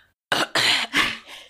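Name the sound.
throat clearing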